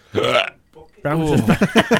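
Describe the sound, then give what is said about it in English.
A short, throaty hiccup bursts out, followed by a brief pause and then a stretch of voiced sounds, like someone talking or gulping right after it. “I've got hiccups, boys.”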